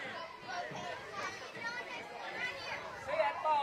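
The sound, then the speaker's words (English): Steady crowd noise from a baseball game: a dense murmur of many voices, including children's chatter and shouts, among them the batter's little sister giving hitting instruction, holding a fairly even level with a brief louder swell near the end. “I'm getting a little crowd noise.”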